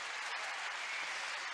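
Steady, dense applause from an audience, a continuous wash of many hands clapping at an even level throughout with no voices standing out.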